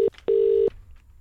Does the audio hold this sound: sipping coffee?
no